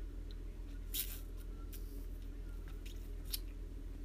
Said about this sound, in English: I'm going to take a sip of my smoothie.